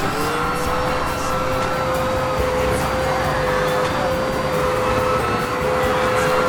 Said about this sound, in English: Maybe I can try hoovering them up.